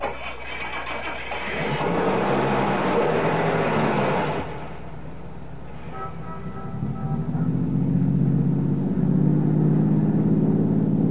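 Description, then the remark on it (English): A car engine cranks over with a loud, broad roar, dips briefly, then settles into a steady low hum that climbs in pitch as the vehicle pulls away and keeps driving. “Start your car, head west to the highway, and keep going till I tell you to stop.”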